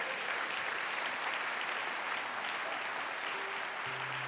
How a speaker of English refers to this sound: If you received anything from that, give the Lord a hand clap of praise.